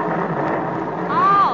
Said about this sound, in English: Heavenly days, it's getting stormy.